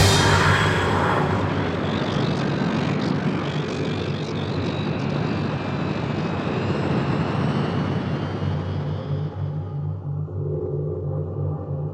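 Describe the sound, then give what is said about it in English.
A spaceship's engines roar at full power in a loud, steady, rumbling drone that fills the whole stretch, with a whining hum riding on top and no voices. “Voice activation mode, TARDIS. Engines, full capacity, now!”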